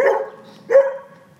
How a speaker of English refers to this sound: Man, we're picking up all kinds of noise today. You got dogs in the back barking at me. I'm glad they're behind a big, about 6-foot privacy fence.